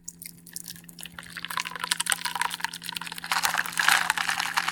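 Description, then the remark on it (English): A chocolate-covered raspberry martini, made with raspberry vodka and heavy cream and shaken, is strained into a martini glass: a steady, splashy trickle of liquid that builds and grows louder toward the end, over a faint low hum, with no talking. “Strain it into your martini glass.”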